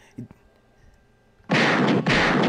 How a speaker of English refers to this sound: Gunshots for Derrick Rose, man.